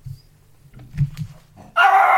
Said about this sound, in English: Oh, that's nice. A bit interruption from the dog.